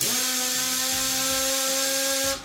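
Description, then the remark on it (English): A power drill whirs steadily for about two seconds while a bathtub car is being built, a loud, high-pitched motor whine that holds an even tone before cutting off abruptly. “Ooh, wrench. Wrench. Drill. Drill.”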